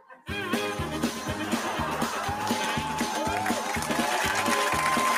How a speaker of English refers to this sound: The mindless clapping from these idiots. That's enough of that.